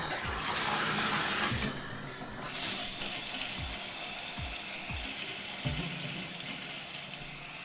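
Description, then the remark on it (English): Water sprays steadily from a shower head, a continuous hiss, with a few soft low thumps spaced through it and no one talking. “do you feel cleaner now, or do you feel like you're covered in all those microbes that came out of the shower head there?”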